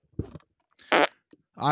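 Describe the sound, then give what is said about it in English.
A sequence of soundboard fart sound effects: three loud bursts with short gaps between them, the middle one buzzy and sustained, the last one rising in pitch, with no talking. “That sounded like a soundboard fart.”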